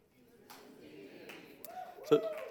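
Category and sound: crowd, golf clap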